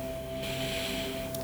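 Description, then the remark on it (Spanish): A slow, steady, deep relaxed breath drawn in through the nose during a guided relaxation exercise, a soft airy hiss that swells and holds for about a second over a quiet, constant hum. “Toma otra respiración relajadamente profunda. Inhala aire por la nariz.”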